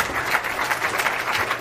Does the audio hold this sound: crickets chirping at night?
no